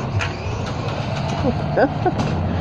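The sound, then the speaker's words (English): A children's small electric ride-on car, ridden by children down a street, hums steadily, its low whirring drone continuous throughout, with faint voices chirping over it. “Riding one of those little electric cars, and I think they're walking the dog also.”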